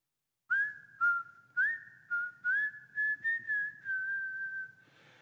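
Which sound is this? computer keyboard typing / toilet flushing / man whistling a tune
man whistling a tune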